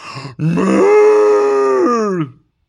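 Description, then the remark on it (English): A person imitates a moose call with a long, loud, nasal groaning bellow lasting about two seconds, after a short grunt, strongly harmonic and steady before tapering off into silence. “What sound does a moose make?”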